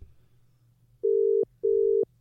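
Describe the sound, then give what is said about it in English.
A telephone ringing tone heard down the line: two steady, mid-pitched electronic beeps in quick succession, a classic double ring, clear and fairly loud over a faint low hum. “It's ringing.”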